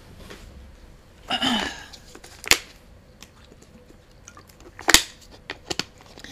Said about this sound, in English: Let me grab my water.